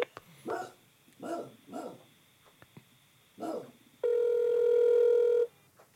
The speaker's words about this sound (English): Call, put it on the speaker.